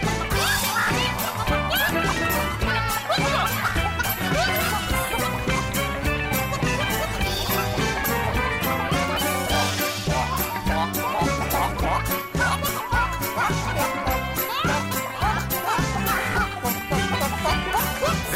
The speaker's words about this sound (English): Chickens have joined in. Not only can they dance, but they can sing.